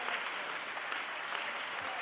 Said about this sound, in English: So when you get back to your seat, just clap your hands unto the Lord when you get back to your seat and just worship Him for a moment in your seat.